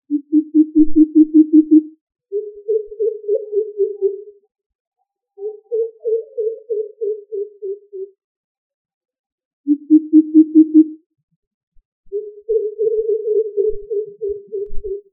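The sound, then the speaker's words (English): A crow pheasant, known as Kalli Kaka in Tamil and Bharadwaj in Marathi, gives deep, booming hoots in quick rhythmic runs, about six bursts separated by short pauses, some runs slightly higher and gently falling in pitch, with no other sounds. “It makes a series of deep hooting sounds.”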